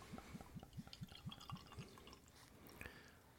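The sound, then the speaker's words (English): Thick stout glugs out of a bottle as it is poured, in a quick, steady series of about eight hollow gulps, clear, trailing off into a soft pouring trickle. “very nice like noise that made. It was like a glug glug glug glug.”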